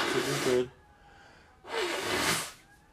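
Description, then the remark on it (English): A person with a cold blows their nose before putting on foundation: two forceful, breathy nose blows, each about half a second to a second long, separated by a short pause. Fairly loud, with a rough, noisy hiss and no talking. “So, hold on, I gotta blow my nose before I put my foundation on, or I'm gonna just end up wiping that shit off.”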